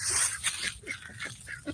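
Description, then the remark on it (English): Several short, nasal quacks repeat in quick succession over a wash of outdoor noise, a group of ducks calling on a pond on a day of about 80 degrees. “There's other ducks in the pond.”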